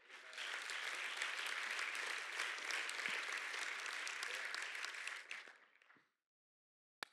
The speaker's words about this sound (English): Someone clap your hands this morning.